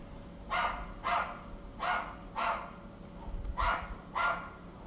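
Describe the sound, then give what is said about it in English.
A small dog yaps repeatedly in short, evenly spaced pairs of sharp barks, six in all, moderately loud, with no one talking. “It's just gonna keep yapping all day fucking long.”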